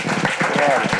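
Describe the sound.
A crowd claps in steady, dense applause for about a second, the sound full and close, with faint voices mixed into the clapping.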